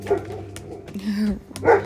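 A dog barks in short, yappy bursts, with a drawn-out whining howl in the middle before another quick round of barks at the end.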